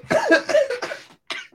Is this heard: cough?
yes